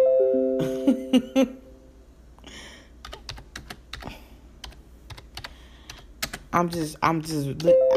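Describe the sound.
Irregular clicking of keys being typed on a computer keyboard while getting on YouTube, a rapid scattered run of taps, framed by brief tonal, voice-like sounds at the beginning and end.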